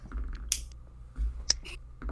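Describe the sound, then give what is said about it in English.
Dice dropped for an attack roll clatter onto a table in a few sharp clicks, with two distinct hits about a second apart and brief rattling between them, over a low, quiet hum; the roll comes to 26. “He couldn't stop it, so he's gonna take it out on you as I drop my dice.”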